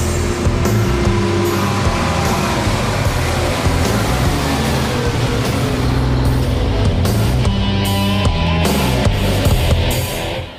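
A heavy lorry engine rumbles loudly, a deep, steady throb that holds for about ten seconds with some mechanical clatter, then cuts off abruptly. No one speaks. The lorry is at least 15 feet high, with gleaming silver sides and about 20 headlamps.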